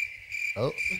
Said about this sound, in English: I hear some groans. Some crickets.